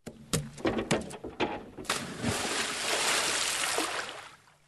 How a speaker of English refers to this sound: So let's dive in. Right, but maybe jump this time because the water in the tub might not be deep enough for a dive.